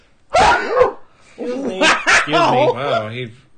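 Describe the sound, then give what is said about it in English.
A loud, shrill sneeze bursts out with a harsh, screechy, almost shrieking quality, followed by a few seconds of people's voices talking and reacting. “Sneezed We're and it trouble. Sounded like a pterodactyl was coming out of the sky.”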